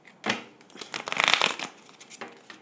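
Brisk shuffling of cards, a quick riffle of papery flicks swelling into a dense burst in the middle before trailing off, moderately loud with no one speaking.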